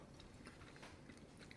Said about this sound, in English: So thoughts? I guess you guys are still chewing.